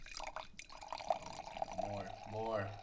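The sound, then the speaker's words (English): Liquid being poured to top up someone's glass, a steady gurgling stream whose tone climbs as the glass fills, with people talking over it. “Alright, should I top you off? Would you like a little bit more?”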